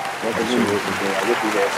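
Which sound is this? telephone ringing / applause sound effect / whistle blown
applause sound effect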